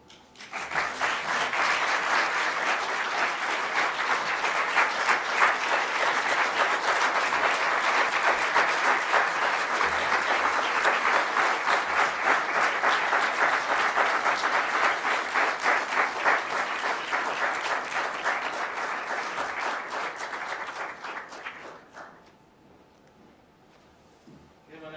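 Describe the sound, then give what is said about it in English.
Sustained, loud audience applause with dense, rapid clapping that holds steady for about twenty seconds before tapering off, leaving only faint quieter sounds. “round of applause.”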